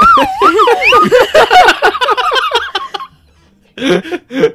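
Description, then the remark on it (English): A very small toy fire truck's siren wails in quick, high-pitched warbling rises and falls for about a second, then gives way to bursts of giggling and laughter that stop briefly and pick up again. “This was supposed to be the fire alarm. Fire truck.”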